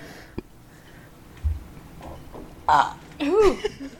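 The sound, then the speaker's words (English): A burp: a short croaky belch, then a longer, louder one with a wobbling, rising-and-falling pitch, heard alone with faint room noise and a soft thump. “Oh, I have to burp. Hang on.”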